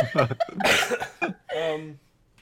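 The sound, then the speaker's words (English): A harsh cough bursts out between short voiced sounds, followed by a brief drawn-out vocal noise before it falls quiet. “Sorry for the coughing, guys.”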